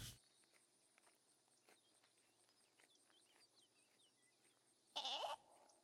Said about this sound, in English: The sheep. That's good timing.